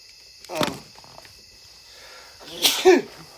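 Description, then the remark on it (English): Two abrupt sneezes about two seconds apart, the second louder and more forceful, over a faint steady high-pitched whine in the background. “bless you.”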